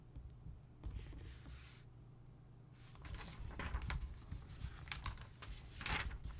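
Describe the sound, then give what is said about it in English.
Pages of a book turning, several soft papery swishes and rustles at uneven intervals over a low, steady background hum, with no one speaking. “Turning pages with the red years.”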